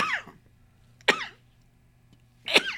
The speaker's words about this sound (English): That's a sneeze, by the way. No worries for our listeners. Our studio has been sanitized, and we did do our test before we came in here today.